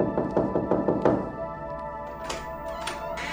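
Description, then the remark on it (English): A quick run of about seven firm knocks on a door, evenly spaced, followed by a pause and a couple of duller, scraping thumps against a steady background hum. “And I remembered the knocking on the door, answering it, and the attack that followed.”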